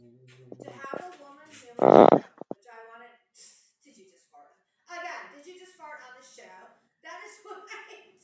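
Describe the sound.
A short, loud, rumbling burst like a microphone being bumped or shifted, sounding much like a fart, cuts in once amid people talking close to the mic.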